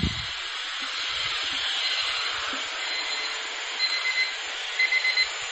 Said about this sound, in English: That's the first 6 minutes up. My timer, I can hear it, I think, left in the hall.